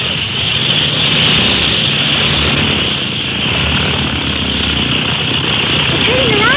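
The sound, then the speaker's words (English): A small propeller plane's engine starts up and roars loudly and steadily, a dense, rumbling drone that holds at full strength for several seconds without pause, as the plane is brought up to the float. “But the small plane as that can be brought right up to the float instead of them having to roll out.”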